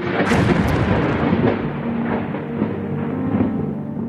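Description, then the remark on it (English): A sharp crack of lightning striking a tree opens into loud, rolling thunder that rumbles continuously for several seconds, heavy, with no voices present. “A crack of lightning flashed across the sky, striking a distant tree.”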